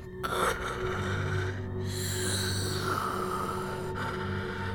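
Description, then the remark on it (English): A creature's harsh, rasping breathing rattles on steadily for several seconds, loud and wet-sounding over a low, rumbling undertone, with brief catches between breaths, as if words are flowing through that it cannot articulate. No one speaks. “It is still breathing this rasping sound.”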